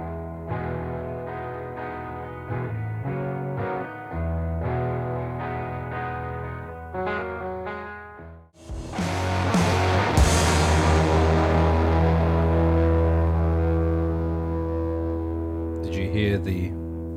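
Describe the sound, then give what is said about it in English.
A country-flavored rock song with a male singer: a sparse, ringing guitar intro gives way partway through to the full band crashing in with drums and driving guitars, loud and steady. “I mean, I think you could hear a little bit of that country kind of...”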